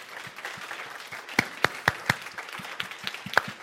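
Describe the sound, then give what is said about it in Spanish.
A crowd applauding steadily, giving a clap to the Lord, with dense overlapping claps and a few sharper, louder claps standing out near the middle. Nobody speaks. “Give a clap to the Lord. Dale un aplauso al Señor.”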